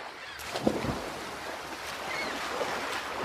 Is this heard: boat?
yes